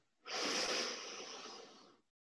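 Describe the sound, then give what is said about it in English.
A single long, steady inhale drawn fully through the nose during a breathing exercise, airy and hissy, lasting nearly two seconds, with no one talking over it. “And again, breathing in.”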